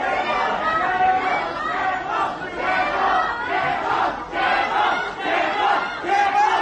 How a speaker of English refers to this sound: Reports from China's southwestern Chongqing say residents are protesting local lockdown orders. In a video circulating online, locals are seen taking to the streets, shouting, "Remove the lockdown."